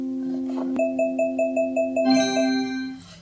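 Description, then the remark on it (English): Electronic beeps from a scanning app, Alexa, as a box of dog biscuits is turned in front of the camera: a steady run of about eight quick, evenly spaced beeps over a sustained tone, then a brighter, richer chime-like tone to finish. No voices. “I was just turning it around until I heard the beeps and then I stopped turning it.”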